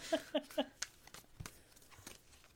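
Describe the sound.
Three quick voiced syllables, then soft papery tarot cards being shuffled and pulled for a reading in a string of crisp riffles and clicks at fairly low volume.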